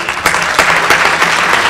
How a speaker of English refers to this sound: So thank all of you in this room for that gift, and I ask you to give yourselves a round of applause.